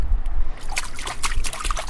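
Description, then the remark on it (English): Water sloshes and splashes irregularly in a clawfoot bathtub, heated by hot coals underneath, as someone climbs in, with bursts of bright dripping and swirling over a low rumble, moderately loud. “There are hot coals right underneath our clawfoot. But the water temperature is nice.”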